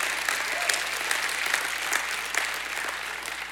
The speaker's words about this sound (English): I don't know about you, but I've been set free. Anybody in the house been set free? Give God a hand clap.